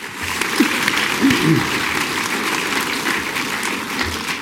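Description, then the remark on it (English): Sustained audience applause as a simple public vote, a dense steady clatter of many hands clapping at an even level for several seconds, with faint voices briefly audible underneath. “Simple public vote by applause.”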